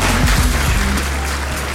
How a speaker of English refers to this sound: Yeah. Round of applause.